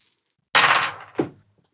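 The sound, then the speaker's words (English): After a short silence, dice rolled for an Investigate skill check tumble off a table with a sharp, rattling clatter, followed a moment later by a second, smaller knock as they settle. “Try and keep your dice on the table”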